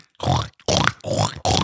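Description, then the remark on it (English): People imitate pig grunts: four loud, rough, snorting bursts in quick succession, each about a third of a second long, separated by short pauses. “Now we're just sounding like pigs.”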